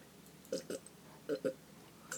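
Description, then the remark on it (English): Someone slurps water in short, wet gulps that come in pairs, two quick slurps, a pause, then two more, and a final brief one, with no talking. “I'm glad you slurped so that we could all enjoy the experience of you drinking together as a family.”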